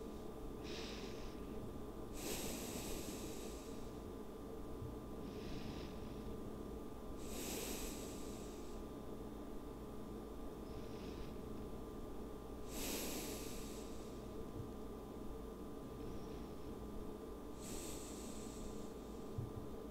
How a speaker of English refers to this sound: Are you breathing? Breathe with me.